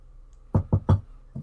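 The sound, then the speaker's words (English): Three quick, solid knocks on a door in an even rhythm, followed after a short pause by a single softer knock, with no voices. “I'm gonna knock on Shi'Thead's door first because I hear yelling and I'm concerned about people's safety.”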